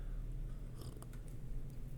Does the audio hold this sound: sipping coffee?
yes